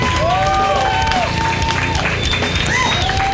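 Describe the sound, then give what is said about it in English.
An audience claps steadily while several voices let out loud, gliding woos over the dense, continuous applause, with a couple of higher whoops toward the end, as the audience cheers to pick the winner of a contest. “There's some woos and claps.”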